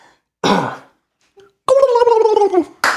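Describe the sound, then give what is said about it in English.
A person imitates a turkey gobble with a loud, rapid, warbling vocal trill lasting about a second. A short breathy burst comes before it, and another brief sound follows. “Will you give me a quick gobble here?”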